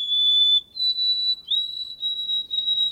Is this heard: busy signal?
no